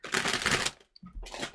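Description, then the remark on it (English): Crinkly plastic rustling of a bag of small coated pretzels being handled, in two bursts: a longer stretch of crackling handling, a short pause, then another round of crinkling. “And I promise you, dear listener, you'll stop hearing rustling now.”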